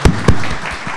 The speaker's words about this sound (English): Let's give him a round of applause for that metaphor. That was awesome.